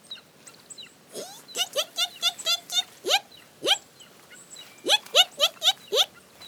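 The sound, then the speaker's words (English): A voice imitates a young wedge-tailed eagle begging for breakfast: a run of shrill, rising squeals repeated in quick bursts, pausing briefly before a second rapid series, fairly loud. “Can you make the sound of a young wedge-tailed eagle begging for brekkie?”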